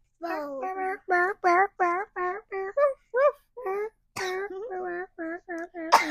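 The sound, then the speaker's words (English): A child imitates a dog barking: a quick, uneven string of about fourteen short, voiced yips, fairly loud, with a rough, cough-like edge to some of them. “Oh, that was like a cough bark.”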